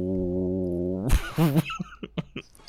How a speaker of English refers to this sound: He was all blowing in the mic.